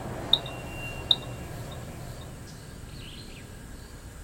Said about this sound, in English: kind of turn at different angles in order to try to pick up a radio signal, which sounded just like a very faint beep. And the beep would get louder and louder as we got closer and closer to the lion with the radio collar on her.